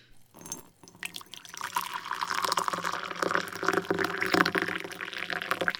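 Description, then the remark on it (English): Hot water pours steadily over an oolong tea bag into a cup, a continuous splashing stream that builds in volume and holds for several seconds after a brief trickle starts it off. “Hot water. This oolong bag has plenty of legs left, and I need all of the soul-regenerating micro-agents I can squeeze from it.”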